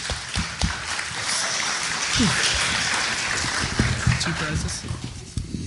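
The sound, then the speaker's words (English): A crowd claps steadily for several seconds, a dense crackling wash of many hands with sharper individual claps popping through and a few voices mixed in underneath. “Round of applause.”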